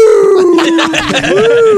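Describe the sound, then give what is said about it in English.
A wolf at a conservatory howls in one loud, sustained note that dips slightly and then rises again, held steady for about two seconds over a faint rustle of background noise. “This wolf over here seems to be slurring his house.”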